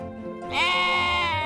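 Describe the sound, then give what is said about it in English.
A single sheep, Montausier, bleats, a loud, wavering baa that starts after a brief low rumble and holds for about a second with no voices around it. “Unsurprising to no one now, Montausier, the sheep after my own heart, was contentedly eating.”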